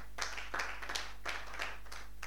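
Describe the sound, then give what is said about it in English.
An audience in a church claps together in a soft, uneven patter of overlapping hand claps, with several louder swells over a couple of seconds and no voices. “It's a good thing to clap.”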